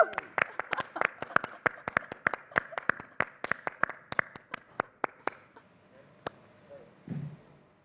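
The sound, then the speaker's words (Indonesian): A single person clapping at home in a quick, steady rhythm, about twenty sharp claps, slowing to a stop with one last clap after a pause. “tapi sebelumnya saya ingin kita kasih tepuk tangan paling kencang dari rumah masing-masing dan secara virtual”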